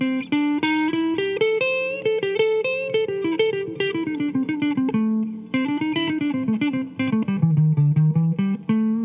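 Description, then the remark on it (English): A solo electric guitar plays a pentatonic lead line of quick, flowing notes that slide through the scale with chromatic passing tones. It is steady and unaccompanied, with no voices. “You can add in some chromatic passing tones there too.”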